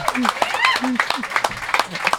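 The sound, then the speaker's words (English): A crowd applauds a guest with scattered, uneven claps while several voices whoop and cheer over them, rising and falling in pitch. It is brief and fairly loud throughout. “Make some noise. Applause.”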